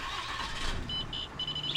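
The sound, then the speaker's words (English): A pickup truck's engine cranks and turns over outside a bar, with a few short, high electronic beeps chiming in a steady pattern over the rumble. “That truck, Jordan Couch still has it.”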